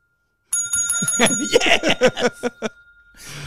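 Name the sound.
bell ring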